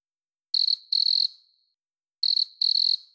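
A cricket chirps in two short pairs of high, buzzy trills separated by a pause, clear against silence with no voices.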